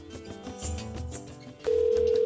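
A steady electronic ringback tone of an outgoing phone call placed by Faith Radio begins partway through, loud, following a bed of soft background music.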